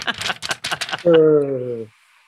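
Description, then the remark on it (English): Crinkly paper notes rustling in a quick burst of irregular crackles for about a second, followed by a steady hummed voice tone that holds briefly and stops. “I got paper ones tonight. Can you hear it?”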